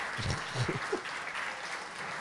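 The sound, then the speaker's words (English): Polite audience applause, a steady wash of many hands clapping at moderate volume, with a few low voice-like murmurs near the start. “I just always assume in my head it's white people clapping.”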